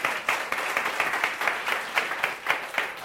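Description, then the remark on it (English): A church audience claps steadily for about three seconds, a dense, bright patter of many hands with small rhythmic surges, no voices standing out above it. “You can clap your hands.”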